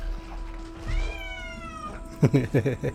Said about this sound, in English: Give me one second as I let my cat out the door. Yeah, I can hear it crying.